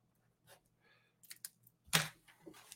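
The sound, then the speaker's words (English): An ink pen from Dollar Tree scratching across paper in short, uneven strokes, starting faint and growing louder, with one sharp, harsh scribble near the end before a few lighter scratches. “This is a big scribbling mess now.”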